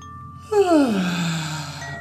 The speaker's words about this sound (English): Again, we'll reach up. And then a big yawn. Big mouth.